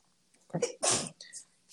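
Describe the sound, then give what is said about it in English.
A single loud sneeze: a short gasping intake followed by a sharp, explosive burst of breath, then a brief faint exhale afterward. “Yeah, please apologize for sneezing.”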